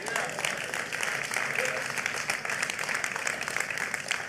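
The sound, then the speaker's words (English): An audience breaks into steady applause, a dense, continuous wash of many hands clapping at even loudness for the whole stretch, with faint voices mixed in. “Y'all can clap if you want to.”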